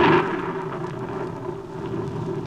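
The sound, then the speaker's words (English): A thunderstorm rumbles steadily, a deep rolling thunder swelling at the start then settling into a continuous low growl, with a soft hiss of rain underneath. No voices. “Know them now as the thunder sings its hymn to Hades, and the lightning lashes at the soul of man.”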